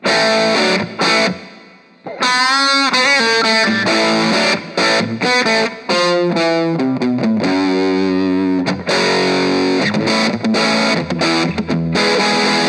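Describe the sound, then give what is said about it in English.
A loud electric guitar through an amp's dirty channel with heavy distortion plays gritty riffs and wailing bent notes, pausing briefly near the start before continuing with sustained, saturated phrases. “Goes with the dirty channel now.”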